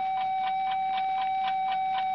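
A clock ticks quickly and evenly, roughly four ticks a second, over a steady high electrical whine and low hum. No one speaks.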